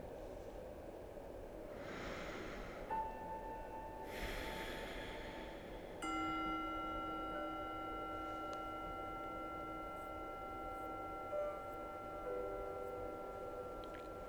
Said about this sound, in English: Notice the chime calls us to close here for now.